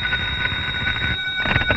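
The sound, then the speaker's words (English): A telephone rings with a steady, shrill, high-pitched tone that holds without a break, set over a low rumbling background noise. “Then one day, the phone rang.”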